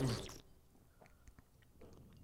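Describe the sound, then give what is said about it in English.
A quiet sip of coffee: a brief soft intake at the start, then faint little mouth and swallowing clicks in near silence, with no talking. “It's like a non-slurpy sip, non-breathing. Delicious coffee.”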